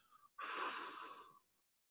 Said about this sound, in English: I'm squinching the nose and clenching the jaw, tightening the muscles in the cheek and the forehead, and then I'm breathing out slowly.